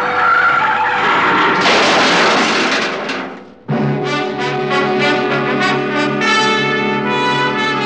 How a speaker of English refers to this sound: I took my foot off the accelerator and then jammed down on the brakes as hard as I could.